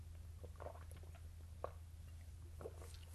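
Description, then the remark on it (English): A few soft gulping swallows, about a second apart, as someone takes a swig of water, over a steady low background hum. “Just a swig of water, give me a second.”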